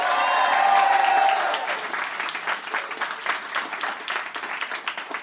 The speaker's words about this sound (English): Give me a round of applause if you've ever heard the show at all before.